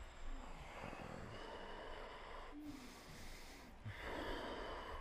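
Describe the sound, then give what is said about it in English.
Many people in a yoga class breathing heavily together while moving through poses, a steady wash of airy inhales and exhales that briefly thins midway, then swells louder again near the end, with no talking. “Oh, the sound of 100 lungs breathing.”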